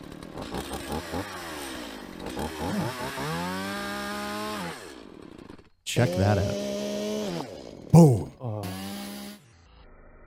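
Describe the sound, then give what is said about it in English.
A chainsaw engine revs and whines with rising and falling harmonic pitch, loud, as it is run against a man's leg in chainsaw-resistant pants, then cuts off abruptly near the end, with people talking briefly over it. “He is letting somebody chainsaw his leg off.”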